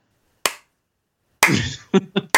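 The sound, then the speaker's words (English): A few slow, widely spaced hand claps, sharp, the first ringing out alone before a brief burst of voice and noise mixes in with the later claps. “Slow clap.”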